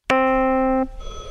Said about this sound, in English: I still find the ringing phone in an empty building to be more unnerving than the dead bodies or the monster